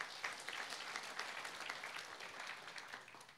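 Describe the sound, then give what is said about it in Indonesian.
A church audience claps for God, a dense wash of many hands applauding at an even level throughout, with no voices standing out. “Tepuk tangan bagi Tuhan.”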